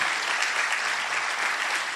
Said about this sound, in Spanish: No frenes esas palmas, hija, déselas al Señor.